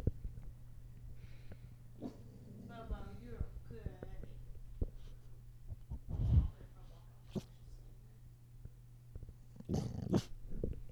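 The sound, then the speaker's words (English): A dog growls low and rumbling, with a couple of short, gruff bark-like bursts breaking through, over a steady background hum. “Will you go outside and get that so he doesn't bark?”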